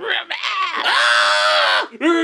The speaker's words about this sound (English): Our brave soldier has been completely disintegrated by the... And yet the echoes of his final screams remain in the air.